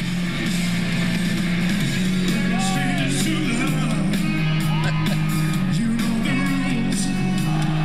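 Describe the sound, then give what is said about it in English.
Loud live rock music blares over a steady roar of crowd cheering and yelling, with sustained low tones and a voice sliding in pitch above the dense wash of noise. “The crowd's into it.”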